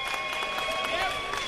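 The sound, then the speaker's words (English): An audience applauding in support of a fantasy football pick of running back DeMarco Murray, a steady wash of dense clapping that holds for the whole brief moment, with faint whistle-like tones and crowd noise mixed in. “Let's get some applause.”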